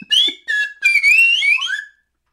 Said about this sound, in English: Dude, I found a song with a great slide whistle in it, by the way.